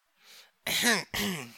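A short intake of breath, then two loud, voiced coughing bursts in quick succession, with a throaty, acted quality like someone performing a cough or clearing their throat.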